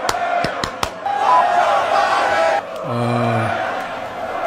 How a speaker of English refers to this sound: as you can hear the chants from the crowd. Let's go, Brandon.